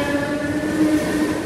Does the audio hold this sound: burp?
no